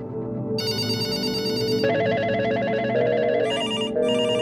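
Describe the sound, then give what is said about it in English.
Several telephones ring at once in the control room at First Energy as the power grid fails, an overlapping, insistent chorus of bright trilling bells layered over one another and continuing steadily without any voices. “And they started to get phone calls.”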